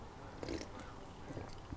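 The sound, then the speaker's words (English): Someone takes a quiet sip of a drink, with soft wet mouth noises and a faint swallow over a couple of seconds. “Anyway, let me take a sip.”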